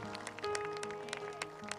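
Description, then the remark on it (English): An audience claps hands to give God praise, in a loose, uneven rhythm, sharp smacks piling over steady, sustained organ-like music that holds underneath throughout. “Well, clap your hands and give God praise today, everybody.”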